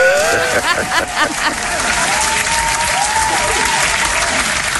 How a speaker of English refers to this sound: I'm going to give you a round of applause right now.